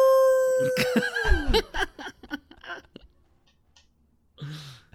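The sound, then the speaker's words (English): A person mimics a wolf howl with a loud, sustained tone that slides downward over about a second and a half, followed by scattered clicks and a breathy exhale. “Actually, I kind of wanted you to just howl again.”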